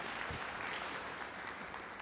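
Sustained applause from an audience, a dense steady patter of many hands clapping at an even level throughout, with no voices rising above it.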